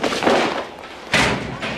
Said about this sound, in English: And then we return after those messages to Kevin getting his books knocked out of his hand by his friend Tommy.